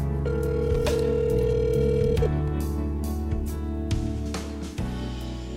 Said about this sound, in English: Going to give him a ring-a-ling-a-ding-ding. Just dialing his number now.